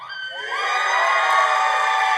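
A crowd cheers and shouts together, starting a little thin and quickly swelling into a loud, sustained roar of voices that holds steady to the end.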